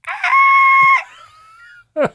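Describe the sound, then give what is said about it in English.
A person loudly imitates a screaming goat: one long, strained, bleating shriek that trails off, followed by a short second yelp. “If they cut out half the screaming, it would be great.”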